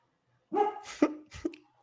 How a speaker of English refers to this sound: My dog's pissed about this Rapids game. That's really Coco.